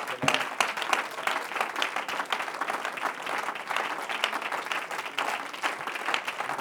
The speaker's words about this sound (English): Oh, why don't you give the Lord one more great hand clap?